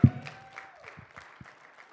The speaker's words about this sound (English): And while you're clapping, can you make some noise for Jesus? Yeah. Our God. You know what? That was okay if you gave a clap for me, but I'm talking about the King of Kings and the Lord of Lords.